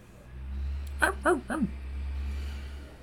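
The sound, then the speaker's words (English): A dog named Tug lets out three quick, high yelping barks in a row with a whimpering, whiny edge, then falls quiet over a steady low background hum. “I know that doggy.”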